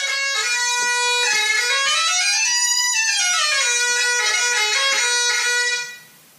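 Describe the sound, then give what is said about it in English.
In a studio, a loud, reedy bagpipe chanter plays a short continuous melody with no drones underneath, the pitch climbing in steps and falling back before stopping abruptly after about six seconds. “In case you're wondering what it means to live a fairly creative life, it means that sometimes a random bagpipe surprise will appear at the studio.”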